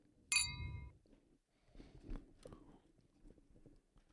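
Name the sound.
glasses clinking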